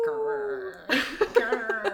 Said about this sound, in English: The noise of Wolf. Probably just one again.